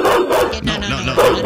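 A dog barks loudly, firing off several quick, harsh barks in a rapid run with snarling overtones and no pause between them.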